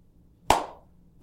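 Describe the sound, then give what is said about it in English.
Sparse, scattered applause from a show audience with only 25% of the seats filled: just two sharp, isolated claps about three-quarters of a second apart, the first trailing off in a lingering ring, with near silence around them and no voices. “Heck, I've produced some shows where I've had some performances where there have only been 25% of the audience filled. And it's not too fun hearing this.”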